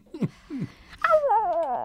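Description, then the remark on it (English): A person imitates a dog: two short low growly grunts, then a rising, drawn-out whimpering whine, fairly loud with no other talk. “Feed the dog. Feed the dogs. Oof, oof.”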